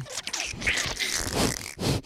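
Loud, scratchy rubbing of a person's backside against a microphone, a run of rough, breathy bursts with a brief pause near the end, resembling a dog sniffing and snuffling. No one speaks.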